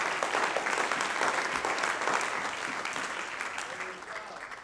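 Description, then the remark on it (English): A crowd claps their hands unto the Lord, a dense wash of many hands applauding at even loudness throughout, with a faint murmur of voices underneath before it tapers slightly at the end. “Oh, would you clap your hands unto the Lord one more time?”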